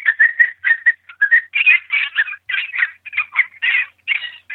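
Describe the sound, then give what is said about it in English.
An electronic fox pup distress call, the 'pup distress 3' sound played from a Shockwave remote caller: a steady string of high, squealing whines and yelps in quick, uneven bursts, fairly loud and without any talking over it. “Always go to pup distress 3, which is this sound.”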